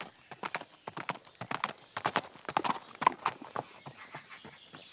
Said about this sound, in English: The troops bring their horses to a halt, and Ira's heart sinks deep in her gut. They had been riding for at least a day or so by now.